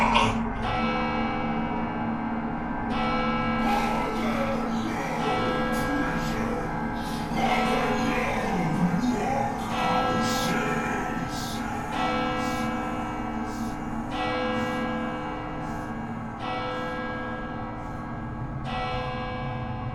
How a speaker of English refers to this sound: The bell struck 12.